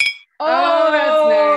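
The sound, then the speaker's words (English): A single quick clink of drinking glasses of bourbon touching in a toast, bright, ringing out briefly before a sustained voice takes over. “We have to clink again.”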